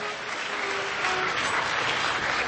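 An audience at an awards night applauds a guest speaker steadily, a dense, even wash of many hands clapping at a constant, fairly loud level throughout, with no voices standing out above it.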